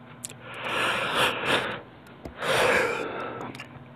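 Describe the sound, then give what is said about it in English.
A drawn-out yawn: a long breathy sigh that swells and fades, then a second shorter breathy exhale right after, with no talking. “Amen, them yawns are starting to creep in, my friends.”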